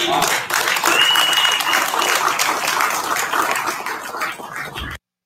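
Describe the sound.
A round of applause from a crowd: dense, steady clapping that swells quickly, holds at full strength for several seconds with some voices mixed in, then thins slightly before cutting off.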